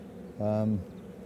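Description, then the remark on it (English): A honeybee buzzes for under half a second, a steady droning tone rising out of the softer, continuous hum of an open hive of healthy, non-aggressive bees with stores of yellow pollen and nectar, from the documentary The Bees Plan, with no talking. “But the bees are healthy. I mean, look at them there. They're not aggressive.”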